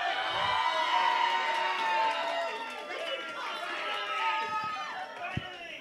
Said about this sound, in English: So I hope you're not cheering because we're finally done. I hope you're cheering because it's been so good and we're finally hitting the climax of this wonderful account